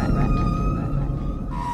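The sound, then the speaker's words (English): Whale song plays in the background of a UN speaker's recording: long, steady tonal moans held at a fairly constant pitch, shifting to a new note near the end, set against a dense, low, rumbling background. “They put whales behind the UN speaker for.”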